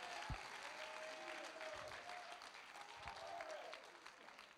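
A church audience at Victory Outreach claps steadily to encourage the preacher, a dense wash of many hands sustained for the whole stretch, with a faint sustained tone and some murmuring underneath.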